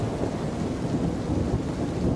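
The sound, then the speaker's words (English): Steady, heavy rain pours down like a fog between two houses about 10 metres apart, with a low, continuous rumble of thunder beneath it, a dense and unbroken wash of sound with no voices. “Here's some lovely rain for you.”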